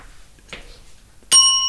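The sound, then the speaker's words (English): A single bright bell strike rings out sharply after a short quiet pause, its clear metallic tone sustaining and slowly fading. A faint soft rustle precedes it. “That's the political bell, which oh, we're using, I don't know, history, oh, no.”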